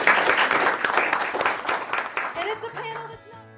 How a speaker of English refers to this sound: All right, well, thank you very much for coming, guys. You were an awesome audience. Thank you so much for your performances. You were all wonderful. Yeah. Clap for them.